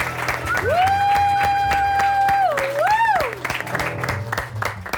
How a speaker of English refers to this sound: Also, guys, please give a warm round of applause for our band, who's going to improvise everything as well.